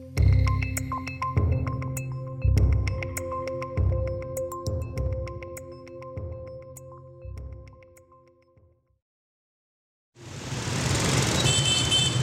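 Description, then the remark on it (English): After a stretch of music and a brief silence, loud, dense street traffic in Hanoi rushes in, a steady roar of motorbike and SUV engines in the final seconds. “Hanoi is an extremely loud city. A tide of motorbikes and SUVs flood the streets every day.”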